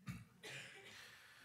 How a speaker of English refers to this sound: Excuse me. Somebody say the word's still good. Even when the pastor has to cough.